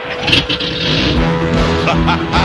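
A Thundercats cartoon vehicle's engine revs loudly and continuously, a dense, roaring motor sound with shifting pitch that fills the whole moment, without any talking.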